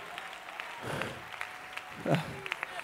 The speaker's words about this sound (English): Clap your hands unto the Lord, and you may be seated.